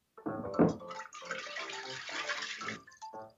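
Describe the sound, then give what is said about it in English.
Oil is poured into water in a demonstration, starting with a brief louder splash and then settling into a steady, gurgling stream for a couple of seconds before it trails off. No one speaks. “What happens when you pour oil into water?”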